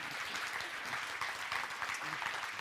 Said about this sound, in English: Hey, thank you. We appreciate it. Let's give this guy a round of applause.